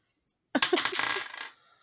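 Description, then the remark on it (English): A small six-sided fate die with symbols on it clatters across a hard surface, a quick burst of bright rattling clicks and bounces lasting about a second before settling, with no voices. “So the fate die came up blank.”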